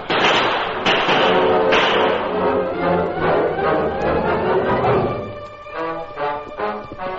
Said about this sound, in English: Now, three of us will stay here and keep up the gunfire.